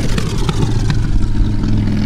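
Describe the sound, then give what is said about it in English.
A loud motorcycle engine revs as it passes, a deep, steady rumble with rough clattering pulses that holds strong for a couple of seconds, with no voices. “And that's a loud motorcycle.”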